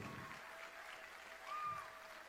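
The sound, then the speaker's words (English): An audience claps steadily, interrupting a woman's speech with rousing rounds of applause, a dense wash of many hands that swells slightly toward the end, with no voices standing out. “They keep on giving her rousing rounds of applause.”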